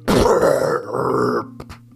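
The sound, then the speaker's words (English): A loud, long belch made by a voice, a deep rumbling gurgle of about a second and a half that fades into a few faint, breathy trailing sounds. “Suddenly, out of his mouth came an enormous belch.”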